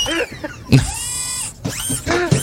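Whirring, servo-like robotic movement sound effects added to a video of Joe Biden moving robotically on stage: a sharp mechanical clunk followed by a rising and falling motorized whine, repeated in short bursts with bright, sweeping electronic tones.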